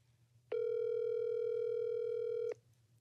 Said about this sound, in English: Girl, answer this phone, okay? That's how it's supposed to ring.